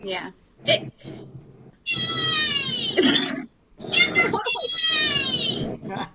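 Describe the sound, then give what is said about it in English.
A timer used to time a discussion goes off as a loud, cat-like yowling: two long wailing bursts with sweeping, falling pitch, separated by a short gap, after a few brief yelps. “Sorry, that's the timer on that one.”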